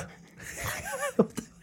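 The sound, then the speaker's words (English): A few short, sharp coughs coming in quick bursts near the end after a moment of breathy, laugh-like vocal sounds. “A cough.”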